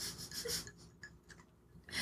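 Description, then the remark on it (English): Ice cubes rattle and clink in a glass of iced tea, in several short, bright, scratchy bursts separated by brief pauses. The sound is quiet, and no one speaks. “Also, sorry if you hear ice cubes. This is just iced tea.”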